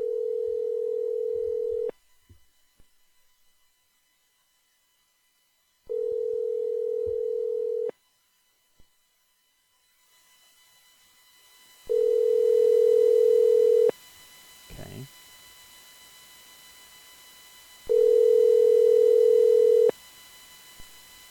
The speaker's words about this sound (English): Oh, wait. It's ringing. Let's see if this works.